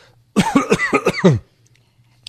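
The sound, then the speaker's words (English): A loud burst of about six rapid coughs from a speaker with a scratchy throat in a studio, running together into raspy throat clearing, lasting roughly a second before falling quiet over a faint low hum. “I will give the phone number while you cough.”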